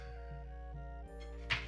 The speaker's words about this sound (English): Oh my god. That hit your phone, yeah. Re-roll it.